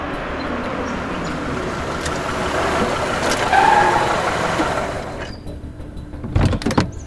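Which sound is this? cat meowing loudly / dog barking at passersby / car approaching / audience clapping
car approaching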